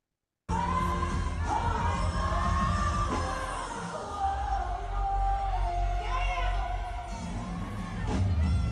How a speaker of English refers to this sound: That was her yelling, damn. I don't know what the fuck she's doing.